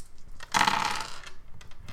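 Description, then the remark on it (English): A handful of dice, rolled for a dagger throw in a game, clatter onto a hard surface in a sharp rattling burst, followed by a few scattered clicks as they settle. Fairly loud, with no voices. “What a splunk of dice.”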